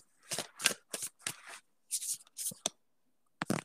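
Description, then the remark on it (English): A deck of tarot cards is shuffled in a rapid series of crisp, papery riffles and slaps, about eight quick bursts with brief pauses between them. It is fairly loud and no one talks. “So, the card that just came out is you're very close to achieving your goal.”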